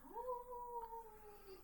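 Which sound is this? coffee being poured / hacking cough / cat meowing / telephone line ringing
cat meowing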